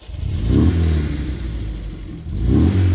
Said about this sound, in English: he took his talis and he went to his car and turns on the engine